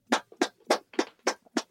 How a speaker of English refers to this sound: I'm clapping because people couldn't see me bowing down to you.